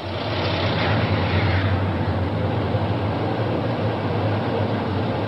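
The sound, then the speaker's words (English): Dense, steady roar of city traffic in downtown Madrid with heavy vehicles rumbling, a continuous low engine drone filling the street without letup. “A quick hello and thank you to his police escort, and he's off into the frantic, dangerous traffic of downtown Madrid.”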